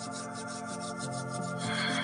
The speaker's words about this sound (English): Bring your hands together for a moment in this prayer gassho position. And then go ahead and rub your hands together.